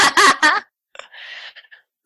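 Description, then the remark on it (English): Children scream outside in a few sharp, high-pitched bursts, followed by quieter shrieks and calls that trail off. “Oh my goodness, there are children screaming outside.”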